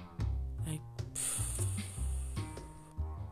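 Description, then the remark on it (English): A voice imitates a balloon deflating, a buzzing, sputtering tone with a steady airy hiss running through the middle, lasting a few seconds with no words. “balloon deflated kind of stuff.”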